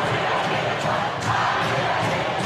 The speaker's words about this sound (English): student section cheering, I believe, that we just won.